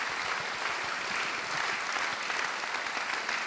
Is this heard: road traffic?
no